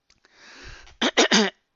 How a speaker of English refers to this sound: And I have to clear my throat.